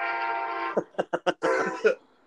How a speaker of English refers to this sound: How loud was that train? Dude, I live next to the train, man. That's my life. I really don't even notice it anymore. I love it. I love that sound, though. Like at night when you're sleeping, the train going by on the tracks.